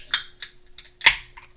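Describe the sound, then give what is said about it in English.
A beer can being cracked open: a few small sharp metallic clicks, then one louder pop with a brief fizzy trail. No one speaks. “I'm gonna crack it open.”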